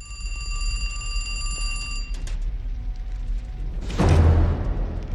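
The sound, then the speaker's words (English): A phone rings, heard by Jack near the flames of an exploded bus, with a steady, bright, metallic trill for about two seconds, then cuts off; a low rumble continues, and a loud whooshing roar swells near the end. “But he then hears a phone ringing.”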